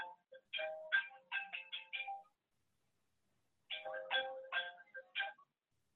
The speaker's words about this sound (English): Sorry, that wasn't my phone, it was Cotton's.